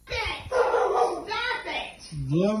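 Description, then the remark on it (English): Dogs bark and yelp excitedly in a loud, nearly continuous run of overlapping cries, ending with a rising, whiny yip. “And they got the dogs.”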